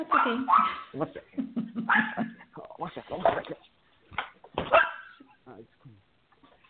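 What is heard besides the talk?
dog barking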